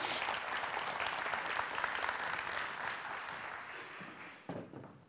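An audience applauds steadily, a dense wash of clapping that holds for several seconds before thinning out at the end.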